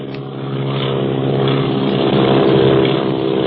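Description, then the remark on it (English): A propeller airplane engine drones steadily and loudly overhead, its buzzing hum growing slightly stronger as it passes, with no voices present. “Where did that other plane come from? Look, it's following Clint and Barney.”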